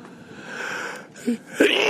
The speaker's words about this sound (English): Sorry. I was about to say, hang on, and instead I kind of sneeze out. Sorry.